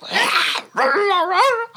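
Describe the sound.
A voice imitates a snake-like creature in a tabletop role-playing game: a breathy, drawn-out hiss, then a wavering, high-pitched yipping wail that bends up and down in pitch, ending with a brief click.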